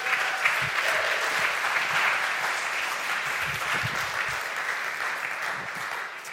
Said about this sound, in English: you guys can give her a round of applause as she comes up.